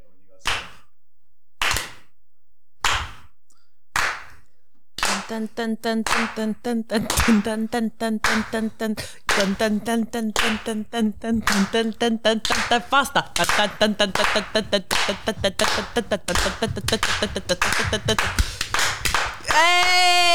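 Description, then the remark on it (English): Four slow, deliberate hand claps, a slow clap for Greek dancing, ring out alone, evenly spaced about a second apart. A busy stretch of overlapping voices follows, with quicker claps and clatter mixed in. “Slow clap.”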